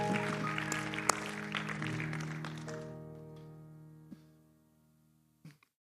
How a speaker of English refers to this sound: Why don't you clap your hands to the Lord one more time as you're being seated.